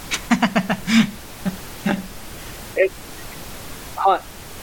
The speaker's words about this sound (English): You hear like a lot of static kind of going on. There's definitely some crackles.